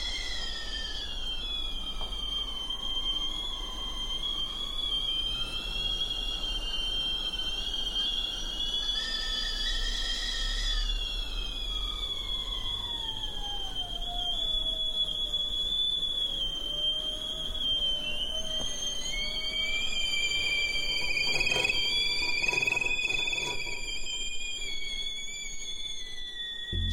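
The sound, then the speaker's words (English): Several shrill whistling teapots sound at once, loud, their overlapping high tones sliding and bending in pitch as the kettles are picked up so they go quiet and set back down so they whistle again, forming a composition. No one speaks. “And they sort of created this composition with them by picking up teapots so they got quiet and then putting them back down so that they would whistle again.”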